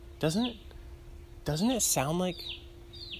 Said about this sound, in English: It sounds like these birds are banging. Like they're just... They're going nuts.